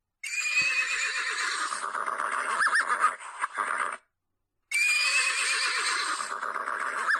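A horse whinnies loudly for about four seconds as it kicks a wolf and gallops away, with hoof clatter mixed in, then falls silent briefly before another long burst of neighing and hooves. No one speaks.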